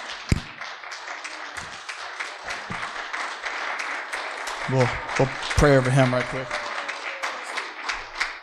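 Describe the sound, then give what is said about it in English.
A church audience applauds a guest speaker as he comes up, in a steady, dense wash of clapping that lasts the whole stretch, while a man's voice speaks briefly over the noise. “So, as he comes up, can we give him a big round of applause?”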